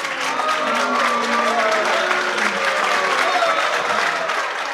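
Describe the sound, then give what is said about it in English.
A large audience reacts with displeasure as President Reagan speaks about denying entry to the United States for immigrants with certain diseases, a dense, steady, loud roar of voices and clatter throughout, with a few raised voices cutting through the din. “Inciting a great deal of displeasure among the crowd.”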